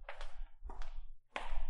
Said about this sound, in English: The clicking of her heels grows faster with every passing second.